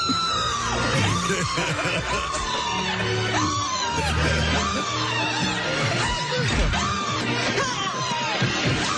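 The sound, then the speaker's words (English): A man screams loudly and repeatedly in a film scene, in long, strained, rising-and-falling yells over a dense, loud backdrop of crashing music and bangs, the cries recurring roughly every second or so throughout. “Or did you do that in one take, that scream?”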